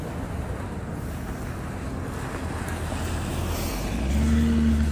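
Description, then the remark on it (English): A car passes along a lightly traveled alley thoroughfare, its low engine rumble steady under wind noise before swelling louder in the final second. No one speaks. “And there goes a car.”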